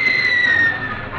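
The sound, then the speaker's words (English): A shrill, sustained whistling scream of an incoming shell, a 'screaming Mimi' fired by Japanese forces, whose tail adjustment cuts the wind so it screams; it holds a high pitch and sags slightly lower as it goes, over a dense rushing roar that stays loud throughout. “Just a screaming Mimi. Got some kind of a tail adjustment that cuts the wind and sort of screams.”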